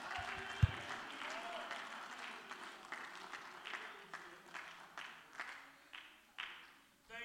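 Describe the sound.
An audience at a morning church service claps and shouts together in a dense, steady wash of applause, mixed with raised voices. Toward the end, sharper, evenly spaced claps stand out in a rhythmic beat.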